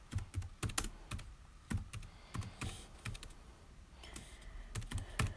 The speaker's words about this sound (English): Hang on, I'll just look up his age. Sorry for the silence, apart from the typing.